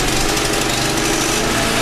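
The engine of the chaoticradio.com traffic helicopter, throttled up to warm up before going airborne, runs loud and steady, a buzzing, rattly drone with a low humming undertone that holds an even level throughout, with no one speaking.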